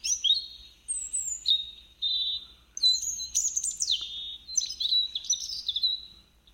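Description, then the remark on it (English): Many birds sing at once, high chirps and warbling trills overlapping continuously with no pauses, clear against a faint low rumble. “This particular recording is loaded with bird songs, as well as the Obrí.”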